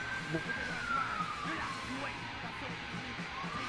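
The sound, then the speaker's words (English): A police car siren wails, its tone sliding slowly downward, while people talk underneath. The siren is from a constable's car in a residential neighborhood. “Was that the cop car?”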